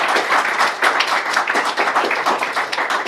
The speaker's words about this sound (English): Let's have a round of applause.